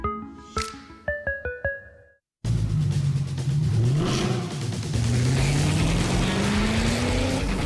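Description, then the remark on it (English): A quick run of bright, plucked tonal notes stops for a beat, then the engine of a Mercedes-AMG GT four-door coupe roars in loud and sustained, its pitch climbing steadily as it revs and accelerates. “GT four-door coupe from Mercedes-AMG, because life is a race.”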